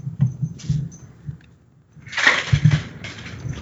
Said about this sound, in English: Hello, kitty being noisy. That's what they do.